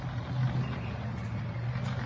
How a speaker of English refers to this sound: What's with the jeeps and the tractor pulling the trolley?